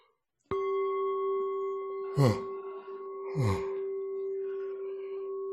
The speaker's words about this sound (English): Even listening to my yawn might make you spontaneously yawn, and you can fake it.